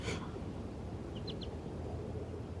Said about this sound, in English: For these birds that are raising their young in quite strange environment back in the parking lot of the church.